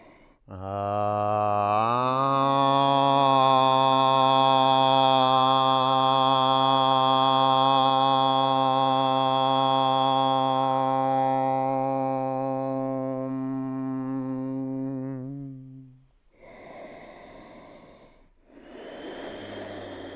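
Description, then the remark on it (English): A group seated with eyes closed and hands in prayer over the heart chants one long, steady Om, a low droning hum with rich overtones held for about fifteen seconds before fading, followed by audible breaths. “Push your thumb knuckles into your sternum and see if you can pick up on the hum of Om in your bones.”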